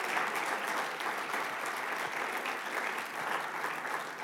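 A church audience claps steadily for several seconds as a clap offering to God while people come forward for prayer, a dense, even wash of many hands with no break or voices standing out.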